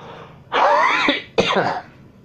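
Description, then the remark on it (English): A loud cough from a person smoking a cigarette, in two harsh bursts, the first long and raspy and the second shorter, followed by quiet with no talking. “Oh, God, I just coughed.”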